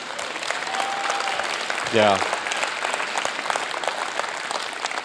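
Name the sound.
audience clapping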